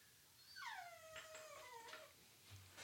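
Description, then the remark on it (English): A dog in a room, unhappy about what is outside, lets out a long, drawn-out whimper that slides downward in pitch, with a few short scratchy scrapes of digging mixed in. Fairly quiet, with no talking. “What are you digging at, dog?”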